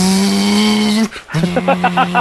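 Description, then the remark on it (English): A voice imitates a revving car engine: a sustained low buzzing drone, a brief break, then a rhythmic series of pulsing vroom sounds, fairly loud and alone without speech. “If you make car noises, it goes faster.”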